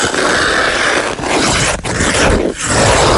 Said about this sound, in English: You're listening out for this skating. This is somebody actually doing a bit of skating.